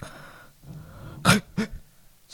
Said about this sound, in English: Sounded like you were choking on your own tongue.